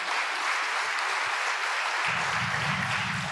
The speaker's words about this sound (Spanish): Y lo que yo compartía, un aplauso.